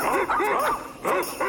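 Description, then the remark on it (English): Dogs bark and yip in the Yukon, Canada, in a quick, overlapping series of short, high-pitched calls, fairly loud, with no one talking. “It sounds like dogs.”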